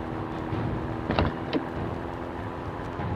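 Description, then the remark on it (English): A steady, rumbling hum of a moving car fills the whole stretch, with two brief knocks or clicks cutting through about halfway. “I can't believe you shot a Tommy on top of a moving car.”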